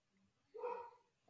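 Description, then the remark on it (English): A single bark from the speaker's dog Tilly, fairly muffled, a short tonal woof of about half a second amid otherwise quiet surroundings. “And immediately, my dog starts barking.”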